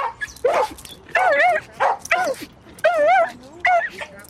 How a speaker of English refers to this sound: Ray Ray immediately starts to bark like crazy at the other terriers.